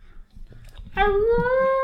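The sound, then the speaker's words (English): A person's voice imitates a spooky wolf howl for Halloween: one loud, sustained, tonal 'ooo' that holds and rises slightly in pitch, preceded by a moment of low rumbling noise. “I try to do the spooky wolf, guys. It's Halloween.”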